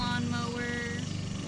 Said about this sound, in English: I think it's really good to fall asleep to, because there's a great... Just listen. A great ASMR of lawnmower.